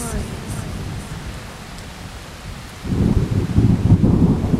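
A thunderstorm with steady rain hissing throughout and deep rolling thunder that swells louder midway, rumbling heavily in the low end without any voices.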